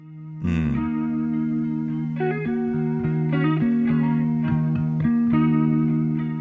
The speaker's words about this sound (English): It's got a wobbly kind of lo-fi sound to it, which is not …-y, but he does a lot of the, what you call a hammer-on.